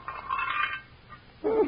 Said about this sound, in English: Bones sure sound hollow in that frying pan.